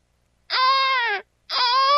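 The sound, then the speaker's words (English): A sound-effect recording of a baby crying in two loud, sustained wails separated by a short pause, each cry high-pitched and strained, sagging slightly in pitch toward its end, with no talking. “The sound effects I keep on file of a baby crying.”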